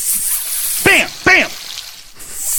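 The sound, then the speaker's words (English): A steady sizzling hiss runs throughout, briefly broken near the end, with two short rising-and-falling vocal whoops popping out over it. “It's fun to do the sizzle.”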